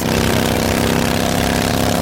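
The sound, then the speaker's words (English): A motorcycle engine revs loudly, a continuous throaty roar that rises and settles slightly over two seconds, with no voices. “And this is how that same commercial sounds on your motorcycle.”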